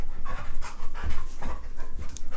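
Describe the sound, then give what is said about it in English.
An excited dog, Nola, pants rapidly and steadily after knocking a Facebook microphone off, quick breathy huffs repeating in a fast rhythm throughout, fairly loud with no speech over it. “She gets very excited. And she knocked a Facebook mic off.”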